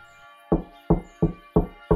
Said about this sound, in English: Beyond the knocking in his skull, however, someone is knocking at the door.